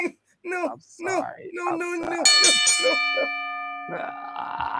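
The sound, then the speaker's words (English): A single loud strike of a wrestling ring bell, hit with a hammer, rings out with a bright metallic clang and a long, slowly fading ring. People talk before and over it. “We gotta read the other bell.”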